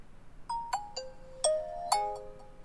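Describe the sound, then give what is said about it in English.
A phone's startup jingle: five bright electronic chime notes in a quick melodic phrase, some sliding between pitches, ringing out clearly on their own with a soft fading tail. “That's an interesting startup sound.”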